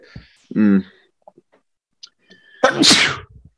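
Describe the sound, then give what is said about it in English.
A single loud sneeze: a short voiced gasp, a brief pause, then a sharp, breathy explosive burst that trails off quickly, with no talking around it. “Bless you.”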